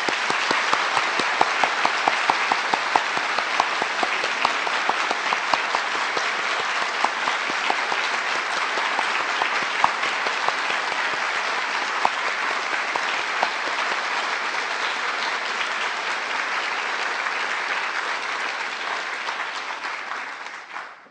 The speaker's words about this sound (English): Please join me in applauding Leopold Engleitner for coming here to us.